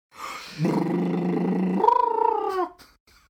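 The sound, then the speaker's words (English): A voice imitates a tiny motorcycle engine, holding a steady low buzzing drone, then jumping to a higher, pulsing rev that wavers briefly before cutting off. No talking. “Coolest motorcycle, tiny motorcycle ever.”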